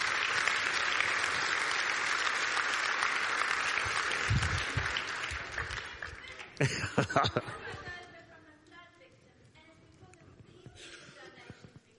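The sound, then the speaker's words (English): An audience claps steadily in a dense, rapid wash for about six seconds, with a few sharper claps and chuckles near the end before it fades into quiet murmuring. “Guys, we can clap right now for that.”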